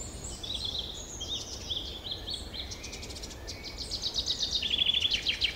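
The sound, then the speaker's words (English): Several birds sing and call to each other, high chirps and warbling phrases overlapping continuously, some sharp rapid trills near the end, over a soft outdoor background hum, fairly quiet. “We often hear even more of them as they sing and call to each other.”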